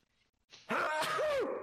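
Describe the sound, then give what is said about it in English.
A single loud, drawn-out sneeze: a brief breathy build-up, then a forceful burst with a voiced, wavering tone that lasts about a second. No one talks during it. “Bless you.”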